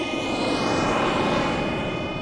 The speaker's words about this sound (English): I expect now I've climbed down out of my personal fighter jet that I fly in a cavalier and yet skillful manner